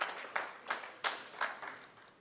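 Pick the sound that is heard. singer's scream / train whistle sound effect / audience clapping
audience clapping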